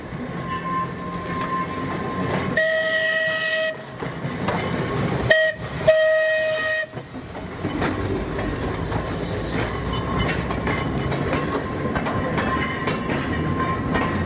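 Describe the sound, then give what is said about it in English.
An old electric tram of the Manx Electric Tramway, which dates back to 1893, rumbles past in Ramsey on its route to Douglas via Laxey. Wheels clatter and squeal in bright bursts, with sustained tonal hoots or squeals partway through and no voices. “we'll take you from here in Ramsey to Douglas via Laxey, where you can change for the Snaefell Mountain Railway”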